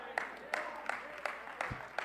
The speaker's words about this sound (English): Oh, man. That's a smattering of applause.